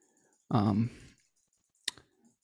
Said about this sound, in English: While I'm clicking through to find the Taurus thing here,